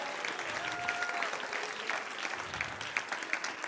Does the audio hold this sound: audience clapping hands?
yes